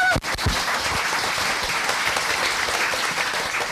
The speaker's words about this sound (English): Can we also thank Chatto, who are doing a fantastic job for contemporary poetry with their collection, with their list. It's great and it's growing and it's really a wonderful list. So a round of applause for Chatto, yes.